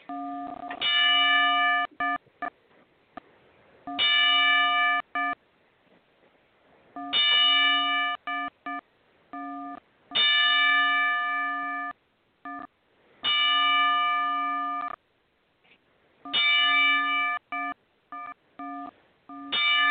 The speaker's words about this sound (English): If you would just join me for a 10-bell salute to the great, late, legendary Pat Patterson.